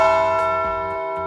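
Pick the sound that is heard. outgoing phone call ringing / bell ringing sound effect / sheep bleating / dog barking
bell ringing sound effect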